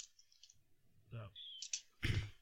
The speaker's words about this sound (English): you typing an essay over there? Yeah, I'm putting together an essay.